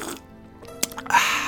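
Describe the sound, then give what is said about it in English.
A quick sip from a drink: a soft, sharp slurp followed by a few small wet mouth sounds and a faint airy hiss, with no talking. “Excuse me, I need to take a sip of fancy wine here.”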